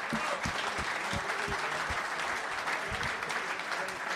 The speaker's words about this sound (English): Give him a big round of applause for that contribution.